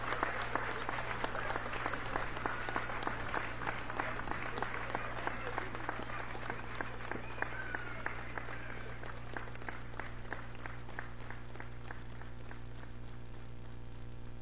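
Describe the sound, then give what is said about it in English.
Sustained applause from a crowd for veterans in Aurora and Kane County, dense and steady at first, then thinning into scattered individual claps toward the end, with a low electrical hum underneath throughout. “It was a long ass clap.”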